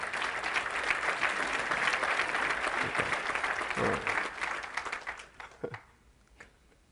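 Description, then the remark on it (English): An audience claps steadily in a loud, dense wash of applause that holds for about five seconds, then thins into scattered claps and fades out, with a voice briefly heard underneath. “I'm going to wait while y'all clap your hands.”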